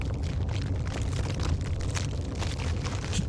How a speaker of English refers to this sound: massive thuds that shake the earth as the two dragons that were fighting above you start to fall from the sky and land on the ground.